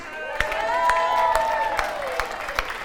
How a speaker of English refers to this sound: let's give her a clap.